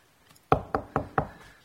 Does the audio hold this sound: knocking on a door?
yes